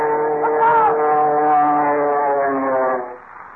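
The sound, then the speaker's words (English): A roaring plane with its searchlights on dives out of the night at a field, its loud, buzzing engine drone holding a steady pitch for about three seconds before cutting away sharply. No one speaks. “Is the yellow mask at the controls of the roaring plane that came diving out of the night?”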